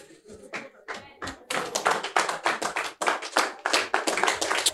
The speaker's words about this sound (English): I didn't ask you to clap, but if you are clapping for Jesus, you can do a better one for him.